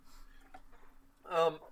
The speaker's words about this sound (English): oh, ew, nasty. I just had a really disgusting burp and I threw up a little in my mouth when I burped.